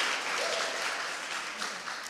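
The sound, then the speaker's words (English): Steady applause from a church audience for a pastor, a dense wash of many hands clapping at an even, moderate loudness throughout, with no one speaking over it. “As we lean into, clap for her.”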